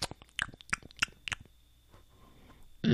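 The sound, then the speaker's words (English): Several crisp, crunchy chewing bites on old dry toast, distinct in an uneven rhythm, fading into a quiet pause before a short louder rustle at the end. “But he takes a bite of his old toast and goes”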